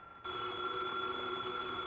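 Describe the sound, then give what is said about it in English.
A desk telephone in an office rings loudly and steadily, one continuous unbroken ring that starts a moment in and keeps going, with no voices over it. “The phone, if you please, Mr. Goodwin.”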